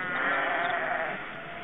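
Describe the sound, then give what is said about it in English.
A sheep bleats in one long, wavering call that fills the whole moment, loud, with no voices around it. “Oh yeah, the sheep are back.”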